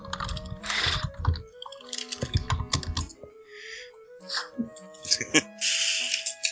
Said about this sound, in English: I like how you can tell something's really cute because you hear a lot of typing all of a sudden. Yeah, everybody stops talking so they can type out. Everyone just stops like, oh man, that was really cute.